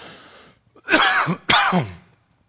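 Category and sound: human body sound, coughing and throat clearing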